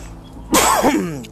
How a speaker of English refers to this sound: Sorry, y'all. I'm getting over a cough.